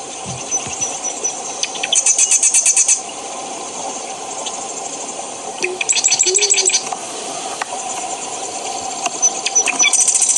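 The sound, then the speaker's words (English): Marsh wren song among cattails: a few bursts of rapid, high, rattling trills, each lasting about a second, over a steady low background hum with quieter chips and buzzes in between. “So let's see if we can listen to the marsh wren here.”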